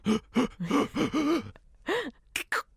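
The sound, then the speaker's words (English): A voice imitates a sneeze, building up with a run of rising, gasping 'ah-ah-ah' breaths before finishing in a short, sharp sneeze burst. It's fairly loud, with no other talking. “Like I like ones where they get a big build up, so it's like.”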